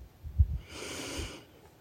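A slow, audible breath out through the nose or mouth, soft and airy, rising and fading over about a second, alone with no talking; an exhale during a guided breathing meditation.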